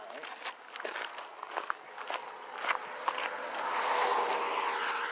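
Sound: footsteps walking outdoors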